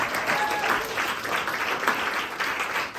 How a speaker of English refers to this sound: all the volunteers who have made this possible with a round of applause, please.